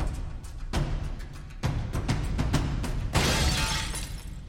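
A man runs full speed into a window and smashes through it out into the cold, damp night air: a loud crash followed by a scatter of sharp breaking and tinkling shards, then a final bright burst of smashing glass. No voices.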